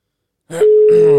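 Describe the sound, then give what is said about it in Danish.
A steady, continuous telephone ringing tone of an outgoing call starts abruptly and holds at an even pitch, fairly loud, while a person speaks over it. “Den ringer. Den ringer.”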